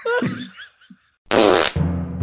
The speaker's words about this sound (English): A fitting tribute to a wet fart of a movie.